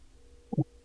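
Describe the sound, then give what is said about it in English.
A short electronic ringing tone of an outgoing phone call sounds once as two quick, closely spaced pulses, moderately loud against a quiet background, with no one speaking. “I'm calling you right now. I just muted myself.”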